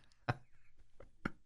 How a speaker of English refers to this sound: And they're like, did you hear that? That was a tree branch being slapped across a tree. Oh, it's knocking. He's knocking.